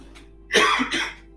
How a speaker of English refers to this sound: Sorry, cough.